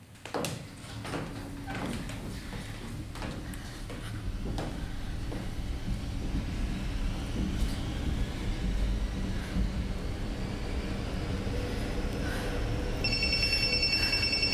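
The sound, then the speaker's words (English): A steady low rumble of a subway train in motion, heading back into town, with sharp clattering clicks early on and a thin high-pitched whine rising near the end. No one speaks. “I'm on the subway, headed back in town.”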